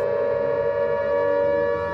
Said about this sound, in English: In the streets of London, the air raid sirens sounded.